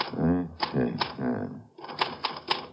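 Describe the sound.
Sharp, clacking keystrokes of a manual typewriter typing out a phrase on a sheet of paper, a few scattered strikes and then a quicker run of several near the end, with a voice talking underneath the first half.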